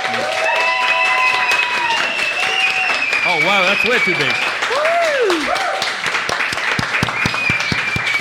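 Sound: audience round of applause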